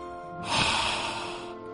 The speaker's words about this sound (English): I'm cleaning glasses, gafas, by breathing on them.